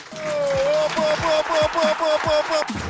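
An audience claps steadily for about three seconds, a dense, continuous patter of hands, while a sustained musical tone and a repeating low pulse play underneath.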